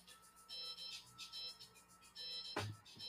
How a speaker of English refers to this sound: That's got music playing. My work phone upstairs.